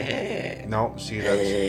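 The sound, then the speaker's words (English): A person makes a loud, exaggerated snoring sound, a drawn-out voiced rumble with a rising and falling sweep, like someone playfully imitating a snore. “That's more snoring.”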